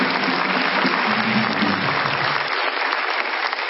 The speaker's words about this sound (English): And I want us to singularly, let's give their excellencies a round of applause this morning. Thank you very much.